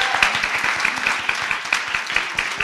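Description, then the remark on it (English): A crowd applauds the pitchers who presented ideas at a pitch event, many hands clapping in a dense, continuous patter that holds at an even, fairly loud level throughout, with no talking over it. “We're just about to wrap up, but I did want to, first of all, a huge round of applause for these pitchers, right?”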